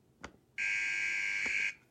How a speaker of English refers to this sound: And that's the buzzer. I'm sure you've all missed that.